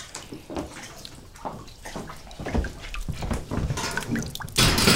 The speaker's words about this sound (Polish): Tu przygotowuję solankę, taki cebrzycek mamy z taką wodą, ze solą. No i potem się będzie wkładać te osypki do tego.